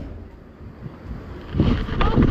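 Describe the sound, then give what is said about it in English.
A boat engine rumbles steadily on open water, buffeted by wind noise, with the churning sound swelling louder and rougher toward the end. “Stop the engine. It stopped, yeah.”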